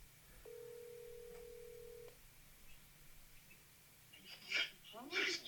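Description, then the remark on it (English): A phone call rings out over a speakerphone: one steady, flat ringback tone of about a second and a half over a low hum, followed by quiet rustling and a few brief muffled bursts. “Do we like put him on speaker, or should I just report? Yeah, sure. No, I'd say put him on speaker.”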